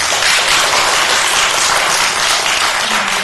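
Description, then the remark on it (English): Steady, loud applause from an audience in a council chamber, a dense wash of many hands clapping continuously with no pauses and no voices. “Well, I appreciate and understand the applause.”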